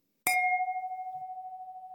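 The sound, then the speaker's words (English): A clinking-glasses sound effect: a single bright clink of glasses, followed by a clear, high ringing tone that wavers slightly as it slowly fades. No one speaks. “Cue the clinking glasses.”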